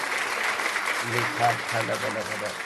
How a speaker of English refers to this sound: Oh, somebody give a big clap offering unto the Lord. Somebody give a big clap offering unto the Lord. Give a big clap offering unto the Lord.